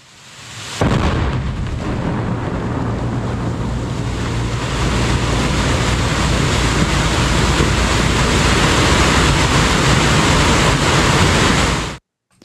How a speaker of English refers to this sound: This was an explosion. Let's have a listen to what that sounded like. We're going to hear the blast and then the torrent of water that followed.